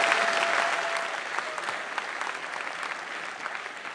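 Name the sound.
audience clapping hands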